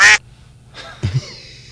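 Two ducks quack loudly: a sharp, nasal quack at the start, then a second, longer raspy quack a moment later, with no talking.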